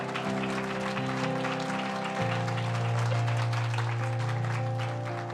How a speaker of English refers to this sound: Let's all say amen together and give the Lord a hand clap before you're seated.